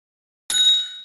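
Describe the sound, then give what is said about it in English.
A single bell is struck once after a moment of silence, giving a somewhat dull, muted clang whose metallic ring fades over the following half second. No voices. “What is your bell sick?”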